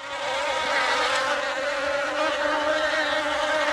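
A dense, steady drone of a large swarm of angry bees buzzing together, loud, with a constant whirring hum that never lets up and no voices present.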